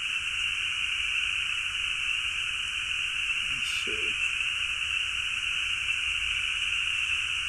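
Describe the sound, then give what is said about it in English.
A dense, unbroken chorus of tree frogs trills steadily at a high pitch throughout, loud and constant, with a person briefly speaking a few words partway through. “you got any other questions about tree frogs?”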